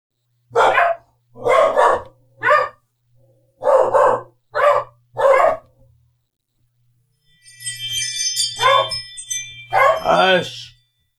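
A dog barks sharply about six times in a steady, evenly spaced rhythm, then after a pause gives a few more barks mixed with higher whiny tones, over a low hum.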